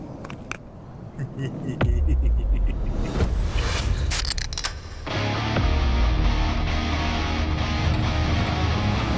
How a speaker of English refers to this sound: The trailer. A movie called Willy's Wonderland.